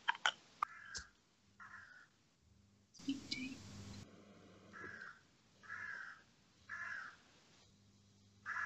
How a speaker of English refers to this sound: Oh, I can hear the parrot. Oh my god. I can't hear a parrot. There's a parrot. No, it's so loud. Are you deaf? It won't shut up.